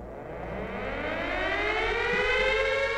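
An air raid siren wails steadily in a Ukrainian city during the war, its tone slowly rising and swelling louder over a few seconds, with a low rumbling hum underneath and no voices present.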